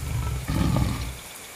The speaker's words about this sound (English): The queen let out a roar to signal the start of the third round.